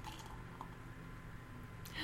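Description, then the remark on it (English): Kirkland Signature Czech-style pilsner, brewed and bottled by Hopfen und Malz Brewing in San Jose, pours steadily into a glass: a continuous gurgling, fizzy rush lasting about two seconds, with a brief clink near the end. “Nikolai always enjoy a good pilsner. Indeed. And the pour?”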